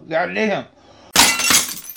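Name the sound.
coughing fit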